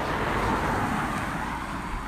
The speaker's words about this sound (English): And a pickup truck just went by that has painted in really big letters on the side, "Did you hug a farmer today?"